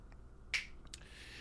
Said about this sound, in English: And and my dog is squeaking her squeaky toy because she knows that I'm talking out loud right now. It's awesome.